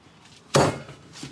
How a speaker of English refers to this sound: Slap that patty. Slap. Onto the parchment.